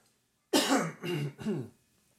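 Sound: cough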